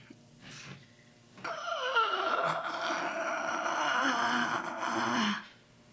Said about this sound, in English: I just got nervous. It's okay. Just do the breathing exercises.